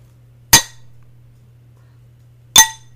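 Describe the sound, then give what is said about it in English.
Two bright, ringing clinks of glass, about two seconds apart, each sharp with a brief shimmering decay, over a faint steady low hum, with A&W soda fizzing. “get ready for the clink of Lincoln”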